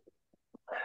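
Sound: sneeze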